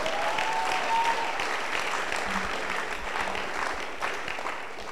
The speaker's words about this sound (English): Amen. I think you can clap for the word of God.